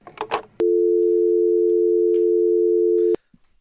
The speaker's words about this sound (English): I'm hanging up the phone.